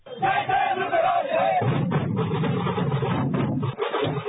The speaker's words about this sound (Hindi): ढोल ताशा के ताल पर नाचती गाती भीड़ पुणे के रास्तों पर उमड़ पड़ी है। आज सुबह लोकमान्य बाल गंगाधर तिलक की प्रतिमा को अभिवादन करने के बाद गणपति विसर्जन का जुलूस शुरू हुआ।